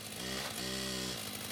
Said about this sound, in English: discover that there are men in funny white suits in the backyard cutting up this potting shed with chainsaws and putting it into radioactive containers.